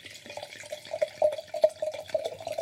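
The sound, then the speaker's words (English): Wine glugs and splashes into a glass in an uneven stream, with a rising gurgle and bright liquid spatter, quiet and steady for a few seconds with no talking. “I love the sound of wine going in a glass.”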